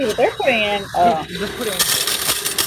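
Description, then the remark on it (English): Coins pour and clatter into a coin-counting machine, a dense metallic jingling rush with mechanical whirring, loud, while voices talk over it. “Yeah, they're putting in. They got a lot of coins.”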